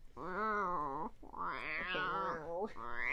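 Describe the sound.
A person wails in a strained, wavering howl imitating a dying cat, loud, the pitch bending and cracking through several drawn-out yowls.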